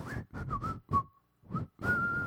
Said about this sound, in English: I'll say, "Oh, I whistle when I'm happy."